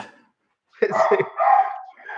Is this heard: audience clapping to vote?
no